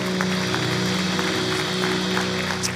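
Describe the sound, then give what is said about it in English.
A church audience claps steadily to welcome first-time guests, a dense, continuous wash of applause layered over sustained background music with held keyboard-like tones. “Can we clap our hands and just show a warm welcome to all of those joining us for the first time?”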